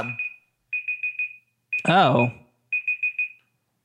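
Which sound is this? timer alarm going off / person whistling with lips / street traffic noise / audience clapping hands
timer alarm going off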